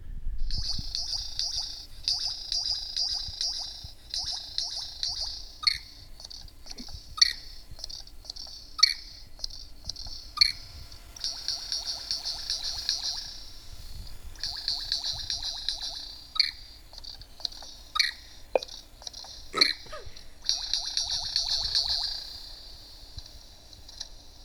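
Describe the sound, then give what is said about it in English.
A superb lyrebird sings alone, a steady high buzzing trill broken by sharp clicks, snaps and mechanical-sounding ticks scattered irregularly throughout, moderately loud with no talking. “That is a wild-ass bird. I mean, it's literally a wild bird. It's called a superb lyre bird.”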